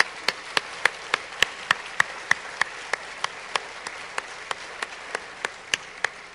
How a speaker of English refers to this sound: Let's clap for him.